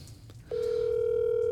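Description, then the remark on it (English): A steady electronic ringing tone of an outgoing phone call switches on partway through and holds unbroken to the end, loud over a faint low background hum. “What are the odds that he answers the phone?”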